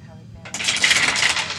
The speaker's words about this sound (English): That's a lot of dice.